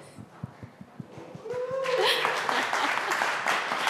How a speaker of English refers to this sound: I had to beg for the applause.